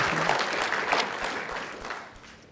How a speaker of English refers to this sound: So let's thank the Lord and thank these parents with an applause, and may God bless you.